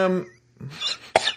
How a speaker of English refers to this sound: Sorry. What the fuck just happened there? I just got a cough. Hold on.